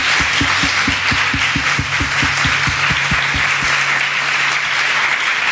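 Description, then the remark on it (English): An audience applauds the speakers at the end of a talk on design, steadily and loudly throughout, a dense wash of many hands clapping, with a run of regular low thumps pulsing through the first few seconds before fading out. “Can we big hand of applause?”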